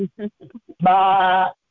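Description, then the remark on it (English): A few short spoken syllables lead into a single loud, drawn-out sheep-like bleat with a wavering, nasal tone, seemingly a human voice imitating a sheep. “I'm a sheep.”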